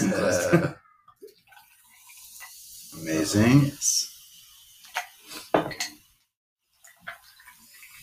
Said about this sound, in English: And we have some glasses of ice. We're going to pour some soda in. Let's get some ASMR here.